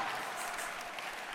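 A church audience claps steadily for the pastor's wife, a dense wash of many hands applauding at once with no pauses, fairly loud and even throughout.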